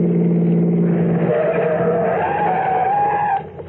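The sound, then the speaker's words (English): A car brakes hard, tires squealing in a loud, rising screech over the engine noise for a few seconds before it cuts off as the vehicle stops. “Stop the car, quick.”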